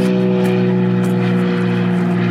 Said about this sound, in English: a plane flies over again.